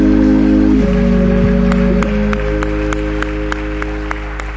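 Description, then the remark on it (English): A seated audience claps hands unto the Lord in a steady, dense wash of applause over sustained organ chords, with sharper individual claps standing out as the sound gradually fades. “When you're seated, one more time, clap your hands unto the Lord.”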